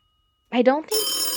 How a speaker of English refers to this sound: I don't think that phone's coming from the studio